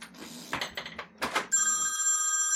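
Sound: telephone ringing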